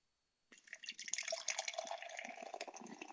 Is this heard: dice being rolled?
no